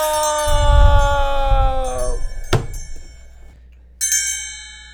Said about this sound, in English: The clock struck 1 a.m.